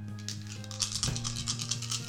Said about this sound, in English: You're rolling so many dice.